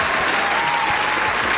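A steady burst of applause from a group, many hands clapping in a dense, even wash of noise that holds at a constant loud level throughout.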